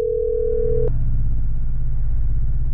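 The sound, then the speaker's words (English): A telephone rings on the line during a call to a mother to tell her of her son's death: one steady electronic ringback tone lasting under a second, then cutting off abruptly, leaving a low, constant droning hum underneath. “As the phone rang, my throat tightened from nerves, as 100 thoughts of how this speech was going to sound ran through my head.”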